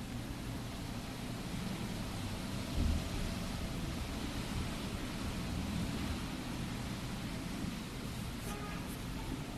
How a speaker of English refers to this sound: See if we can allow life to just be as it is with traffic, sounds. Life in the city, in the building happening.